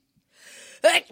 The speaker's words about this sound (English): Sneezed directly into the mic. That scared the shit out of me. I mean, it scared you.